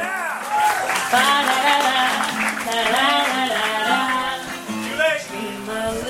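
At a wedding ceremony, a crowd cheers and whoops over steady clapping as a man makes his entrance, with several high voices rising and falling above a dense, continuous wash of applause that holds for a few seconds.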